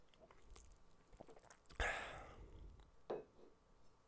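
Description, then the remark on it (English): Someone takes a sip of a drink: a sharp wet slurp trailing into a breathy swallow, followed by a smaller second mouth sound, with no talking. “Let me take a sip here.”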